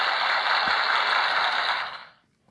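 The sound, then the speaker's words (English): A prize wheel spins with rapid, dense ratcheting clicks that blur into a steady rattle for about two seconds, then slow and fade out as the wheel comes to rest. No one speaks. “Time to spin the wheel again.”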